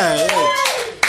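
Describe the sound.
An audience claps in loose, scattered bursts while a voice carries on over the applause, with a sharper clap standing out near the end.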